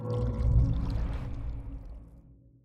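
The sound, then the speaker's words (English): Coffee pours steadily into a mug, a gurgling stream that's loudest early on and then tapers off over a couple of seconds. No one speaks. “You had coffee in your mug now.”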